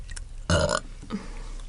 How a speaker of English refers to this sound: These are Prosecco belches. I know, usually we don't get this burpy until summer with beer.